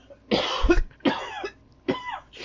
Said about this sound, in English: All right, hold on a second. I'm going to cough up a frog.